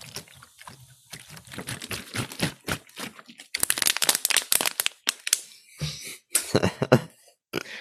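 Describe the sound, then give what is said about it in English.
Water ASMR: plastic bottle crinkling and crunching in irregular bursts, with soft gulps and mouth sounds of someone drinking water between the louder crackles. No talking. “Now it's time, it's that part of the show to where we do some water ASMR.”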